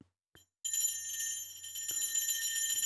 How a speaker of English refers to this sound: our faithful producer, doing a 3-point long distance shout out bell at the moment. It from distance, from deep. Here it is.